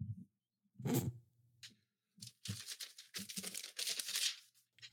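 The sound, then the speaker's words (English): Papers are crumpled, rustled and thrown in several loud, crackly bursts, with a low thump near the start and brief pauses between the crinkling. No voices are heard. “Papers thrown.”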